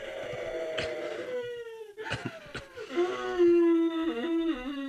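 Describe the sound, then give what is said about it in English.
A man who says he was chopping onions cries and whimpers in drawn-out, wavering wails, with sharp catching sobs breaking in between the sustained high moans. It is loud, continuous and has no speech. “They don't make you whimper.”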